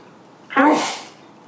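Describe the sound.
A single sharp sneeze bursts out close by, a quick voiced intake snapping into a breathy hiss that fades within about half a second, with quiet background before and after.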